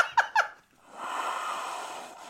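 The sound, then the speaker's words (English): Someone who is sick blows their nose: two quick sniffs, a short pause, then a long, steady, hissing blow that fades out. No one speaks. “Hang on, I'm going to blow my nose because if you can't tell, I'm fucking sick.”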